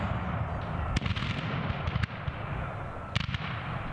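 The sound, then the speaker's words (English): Booming cannon fire sounds in sharp, loud blasts, several reports spaced irregularly over a constant low rumble, with no voices present. Cannon fire in a North Florida pine forest 15 miles east of Lake City, as more than 10,000 soldiers confront each other on February 20, 1864. “The loud booming of cannon fire rips through the North Florida pine forest 15 miles east of Lake City as startled cavalry horses whinny.”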